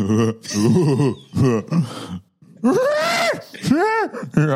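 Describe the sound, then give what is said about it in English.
A person imitates a monkey, giving an audio interpretation of Martin laughing while he pleasures himself, with a run of throaty grunts and hoots, the pitch rising and falling in loud, rough bursts, ending on a couple of long swooping calls. “It's a monkey.”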